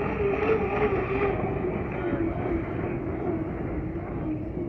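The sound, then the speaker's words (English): A hydroplane racing boat, a type of boat that skims on the water's surface, roars steadily and loudly across the water, a dense, continuous mechanical engine drone with a strong low hum that holds for several seconds without a break. “Another key attraction, hydroplanes. A type of boat that skims on the water's surface.”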